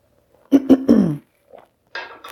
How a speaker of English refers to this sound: Another sip of ginger tea here, excuse me.